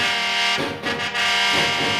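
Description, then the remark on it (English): The horn of the possessed car from the 1977 Universal film The Car blares without pause for two seconds, a loud, harsh, buzzy tone that wavers and shifts briefly in the middle before settling back to a steady blast. “It is the sound of the car.”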